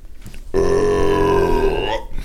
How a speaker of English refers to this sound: What a belch.